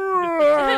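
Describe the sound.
A single drawn-out, wavering whale-like moan made by a human voice, sliding slowly downward in pitch and swelling midway. It is fairly loud and heard alone, without speech.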